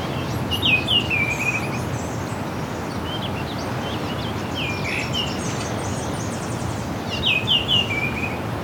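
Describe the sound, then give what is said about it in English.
Oriole calls ring out in short, bright bursts, one near the start and another near the end, with fainter chirps scattered between over a steady low outdoor rumble. “Talkative Orioles.”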